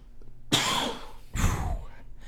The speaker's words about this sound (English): every time one of those coughs happen, I think it could be your last.